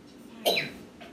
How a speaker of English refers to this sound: He's coughing. I'm okay. Okay, good. Okay. I'll get your water. Hold on.